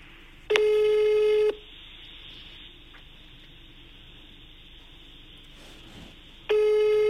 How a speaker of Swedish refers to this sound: Nu ringer vi igen.